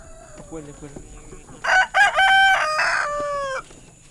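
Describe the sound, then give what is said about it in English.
On a hot Saturday afternoon at the Neighbor's Field community garden in Comer, Georgia, as chickens are being fed, a few soft, low hen clucks come first, then a rooster lets out a loud, drawn-out crow lasting about two seconds, clear, with faint farmyard background. “feeding her chickens, hens, goats, and ducks”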